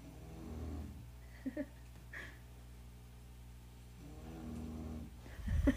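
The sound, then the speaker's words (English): A female dog snores just outside a door in slow, rumbling breaths, each low wheeze rising and fading over several seconds, with faint room noise and a brief rustle near the end. “Hold on, I'm going to move the phone so that you can hear our dog.”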